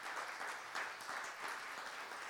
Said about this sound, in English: And I want to applaud. Let's applaud one another this morning.